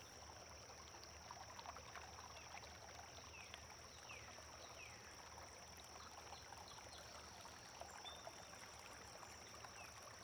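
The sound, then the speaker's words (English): A river trickles and babbles steadily throughout, with a constant high drone of crickets and a few faint bird chirps scattered over the flowing water. No one speaks. “The chirping of birds, crickets, and the changing river add a layer of sound that complements the water's newfound clarity.”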